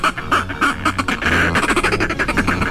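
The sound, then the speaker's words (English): A northern fulmar (Fulmaris glacialis) gives harsh, guttural cackling calls in a rapid, continuous stutter, loud, with no voices present. “The northern fulmar, Fulmaris glacialis, or glacialis, today's Talkin' Birds featured feathered friend.”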